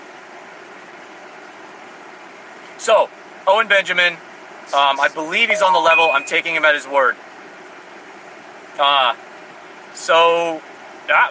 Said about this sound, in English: so I gotta run the AC at it, which is going to be terrible because it's loud